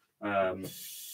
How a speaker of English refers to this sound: Let's see how much we have left. Oh, my Lanta. I dose this water like money in the bank. All right. I'm just going to fill some tap water for rinsing.